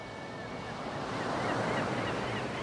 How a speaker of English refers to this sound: The age-old sound of the sea. The same sound folks are hearing right now up around Penobscot Bay and Marblehead, on the Chincoteague Inlet, down in St. Bernard Parish and clean over to the west coast, by Guadeloupe and Carmel